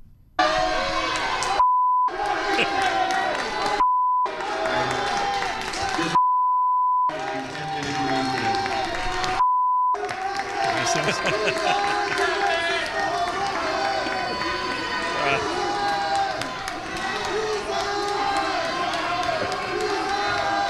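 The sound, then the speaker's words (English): A dense protest crowd in a room roars with yelling and chanting, loud, with a few sharp bleep tones cutting in over the first half before the shouting swells steadily as a man arrives; the crowd yells "loser" at him. “It was kind of loud at moments, quiet, but as soon as he showed up, the room just absolutely exploded.”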